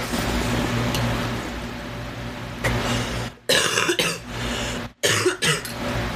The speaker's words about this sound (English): Excuse the phlegmy cough. It's also allergy season.